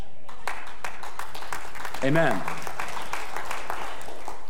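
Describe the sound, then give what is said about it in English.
Scattered, uneven clapping from a crowd, sparse and lacking energy, with a voice briefly speaking over it partway through. “That was kind of a half-hearted clap.”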